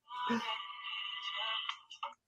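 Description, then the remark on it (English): A mobile phone rings with a bright electronic tone, steady layered pitches held for about a second and a half before a couple of short chirps end it. “Hell was that? My phone.”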